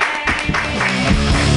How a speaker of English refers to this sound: Keep clapping for Josh. Yay. Clap for the four real people that are here tonight.